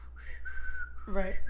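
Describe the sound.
A person whistles a warning signal: one long, steady high note held for most of a second, then a brief wavering tone at the end. It is moderately loud, with no talking.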